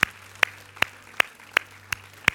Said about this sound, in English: Can we give Jesus a hand clap of praise? Can we do that?